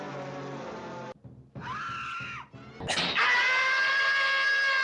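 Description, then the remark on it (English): A loud, shrill cartoon cat scream sound effect: three piercing wailing bursts, the middle one bending up and down in pitch, the last swooping up into a long, sustained screech. No talking. “I will say they are iconic. Tom and Jerry scream.”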